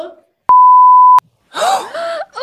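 A single loud, steady censor bleep, a pure high tone lasting under a second, cuts off speech, with voices heard briefly before it and excited talking right after.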